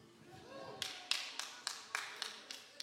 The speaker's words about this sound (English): Yeah, you're going to clap for that.